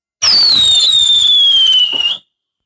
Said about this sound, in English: I am so excited that I feel like shooting off some fireworks right about now. You know what? Screw that. And these are the most expensive fireworks I ever launched here. So here they go.